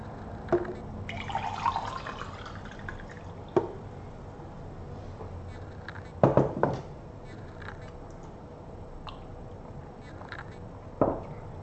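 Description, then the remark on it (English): Water pours into a cup with a rising gurgle, followed by quiet sips, a couple of sharp clinks and soft handling noises, fairly quiet, with no talking. “Let me drink some water.”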